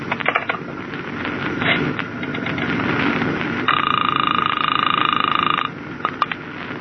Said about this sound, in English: Well, just as a test, pick up the phone and dial the radio communications office. Go ahead.